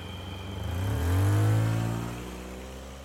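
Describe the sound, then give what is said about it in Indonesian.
A van's engine revs up, its pitch climbing and swelling to a peak before easing off as it pulls away, with no one talking. “Ya udah tuh, aku masuk dan kita langsung jalan.”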